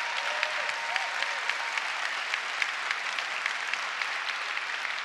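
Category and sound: crowd, audience applause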